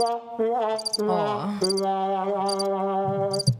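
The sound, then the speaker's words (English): Crickets chirp in short, evenly spaced bursts roughly once a second, layered over sustained, droning musical tones; no one speaks. “Wow. Crickets.”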